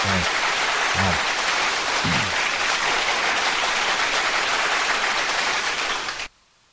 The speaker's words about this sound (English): You didn't hit my applause, by the way.